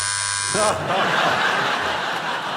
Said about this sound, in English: Challenges are made via our hilarious state-of-the-art buzzer system. For the purpose of clarification, Stephen goes... Rob goes...